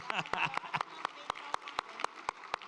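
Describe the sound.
Steady, evenly spaced handclaps ring out, sharp and fairly close, with voices calling out over the first half second before the clapping carries on alone.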